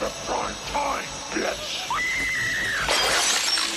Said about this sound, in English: And then he slams her head through the screen.